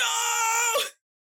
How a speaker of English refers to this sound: And of course, this Gomon screams for his life.